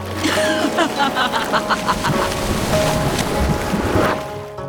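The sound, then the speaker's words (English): Water rises, churning and surging steadily, a dense wash of sloshing and rushing that swells briefly near the end before easing off, with no voices. “The laugh echoed in his ears as the water in front of him began to rise.”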